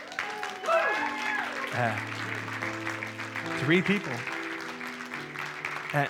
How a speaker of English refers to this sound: And can I just tell you, they're not clapping for me, by the way, if you're new here with us, or maybe you said, yeah, they're not clapping for me, they're clapping for you. We're proud of you for taking that step,